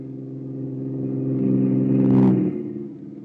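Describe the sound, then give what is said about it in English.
A truck's engine drones steadily on a highway, growing louder as it nears, peaking in a brief rush of noise as it passes by, then starting to fade away; it is the thirteenth truck counted. No voices are heard. “That's number 12, Nick. Yep. And here comes 13.”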